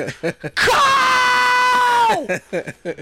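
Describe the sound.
A man lets out a loud, sustained high-pitched scream for about a second and a half, imitating a performer screaming on a track, a shrill shriek that slides slightly downward, with brief talking just before and after.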